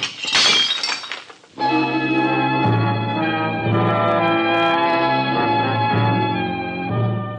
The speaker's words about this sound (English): I'm gonna break another dish.